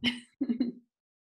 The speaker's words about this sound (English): Okay, so, excuse me, I got a cough.